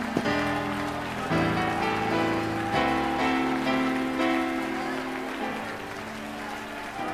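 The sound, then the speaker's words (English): A large audience in an apostolic church claps steadily and continuously and shouts praise to God, a dense wash of hand-clapping that fills the space, with sustained music chords playing underneath and changing every few seconds. “And if you believe that, I want you to put your Bible down and everybody in this place begin to clap your hands with all of your might and shout unto God.”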